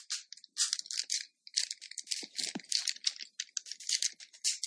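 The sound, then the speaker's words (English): Plastic toy parts click, snap and rattle in rapid irregular bursts as an Optimus Prime Transformers figure is shifted out of its truck form, with a few dull knocks among the bright clatter and no talking. “Transformers are imaginative toys that change from one thing into another. This looks like a truck, and right now it is, but watch.”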